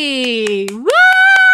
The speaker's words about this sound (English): Woo! I'm clapping for my own guest. I don't know how podcasting works. I feel like I should put a sound effect.